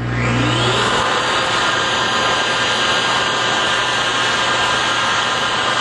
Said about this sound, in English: Oh, that's the hand dryer in the bathroom.